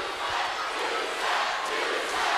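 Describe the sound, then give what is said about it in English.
A large wrestling crowd in Austin roars steadily for a couple of seconds, a dense sustained wash of many voices jeering and shouting together at a wrestler with no gaps, fairly loud throughout. “Crowd hates her, though.”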